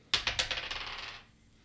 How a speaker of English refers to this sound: Okay, I will roll my dice.